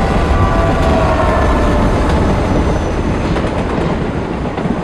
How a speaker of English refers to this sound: There was a thundering clatter, and a moment later, the rhythmic lights of the L train pulsed through the crack between the heavy curtains on the window.